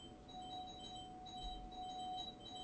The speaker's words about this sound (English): Somebody's being a jackass. Someone's ringing the hell out of the bell. Yes, they are. Okay. That's probably your little brother.